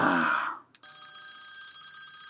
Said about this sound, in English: Oh, I've got a phone call here.